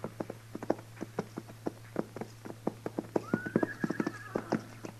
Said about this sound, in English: what do you figure them horses are doing down there? It ain't right they should wander around like that without it.